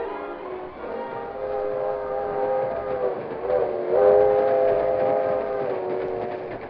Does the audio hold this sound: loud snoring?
no